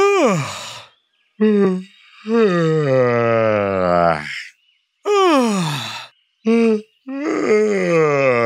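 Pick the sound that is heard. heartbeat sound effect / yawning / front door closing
yawning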